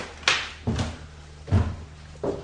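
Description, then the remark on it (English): Tape is ripped off an old oval stained-glass window pane in four short, rasping pulls spaced irregularly, with a low steady hum underneath. “I'm just gonna take the damn tape off it.”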